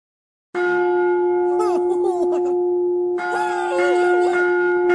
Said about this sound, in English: It's like if you had just cried or pretended or then stuck your head up really quick after the initial gong, like, and then been and then just, like just pretended to shake your head or something.